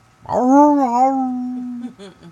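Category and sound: animal, dog howling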